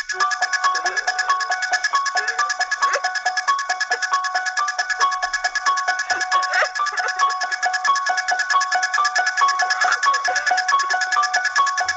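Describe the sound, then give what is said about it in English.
The theme song to the film Krampus played on an electronic keyboard: bright, bell-like synth notes repeating in a steady, even rhythm, loud and unbroken throughout with no talking. “That, of course, is the theme song to the film Krampus.”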